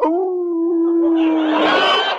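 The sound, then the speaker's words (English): A dog lets out one long, loud howl, holding a steady pitch before it breaks into a rough, noisy, breathy finish. No one speaks. “over there in that doghouse. A girl dog.”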